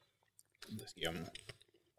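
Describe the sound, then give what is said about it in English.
Soft chewing of a chocolate bourbon ball: a second or so of moist mouth sounds with a brief murmured hum mixed in, then quieter smacks trailing off. “So you can taste the bourbon in those.”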